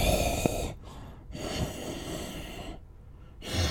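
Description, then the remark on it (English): A voice imitates the slow, heavy breathing of a sleeping spiky creature lying on an edge in a room, with raspy snorting inhales and breathy exhales repeating in a steady rhythm, fairly loud, with no talking. “You look in there and you see sleeping in the room is one of those spiky creatures laying on the edge, just sleeping, breathing.”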